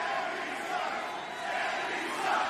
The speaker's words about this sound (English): You wait long enough, a Sammy Sucks chant will break up anywhere